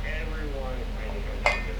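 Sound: glasses clinking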